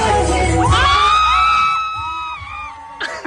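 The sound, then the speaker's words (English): An older woman lets out a long, piercing screech that rises and wavers over a noisy, bustling crowd at a paint-and-sip event, with a thump and scattered shouts near the end. “Did you hear the screech?”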